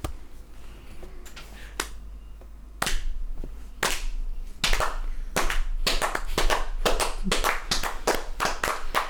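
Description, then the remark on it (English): A slow clap in a locker room: a few sharp, scattered claps at first, then more hands join as the rhythm quickens and grows louder into dense, rapid clapping. No one speaks. “But it is met with a slow clap, which is pretty eye rolling.”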